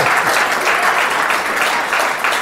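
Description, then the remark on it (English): An audience applauds a remark that President Obama is one of the greats, a dense, even wash of many hands clapping at full volume for the whole stretch, with no voices breaking through. “Yes, if clap for that, please.”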